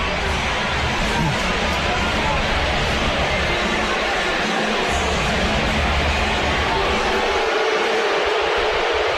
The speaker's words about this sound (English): And the crowd here showing their displeasure with the antics of Max Gottlieb.